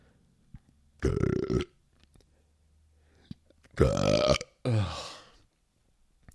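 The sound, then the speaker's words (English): Loud belching: one drawn-out burp, a short pause, then two more in quick succession, the last one gurgling and rough. No talking around them. “Cheetos make me belch just thinking of them.”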